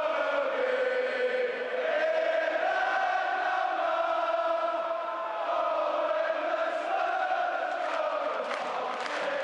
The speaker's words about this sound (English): And you find that sense of belonging in the sound of the crowd.